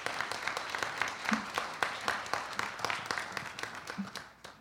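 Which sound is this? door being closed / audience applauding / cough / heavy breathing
audience applauding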